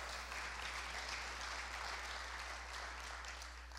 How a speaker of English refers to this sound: And I thank God for the man and woman of God that God has raised up in this house for you at this time. I think you can give them a round of applause.